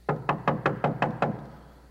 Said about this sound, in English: Peter knocked at the outer entrance, and a servant girl named Rhoda came to answer the door.